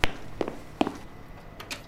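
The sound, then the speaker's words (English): Knocking on the door of Dr. Vega: several short, sharp raps in loose irregular pairs, fairly quiet, with no voices. “Who dares to knock the door of me, the almighty, the great, the one and only Dr.”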